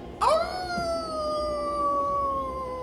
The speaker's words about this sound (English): And all of a sudden, as you're looking around outside, your ears perk up and you hear this howling of wolves as you see it.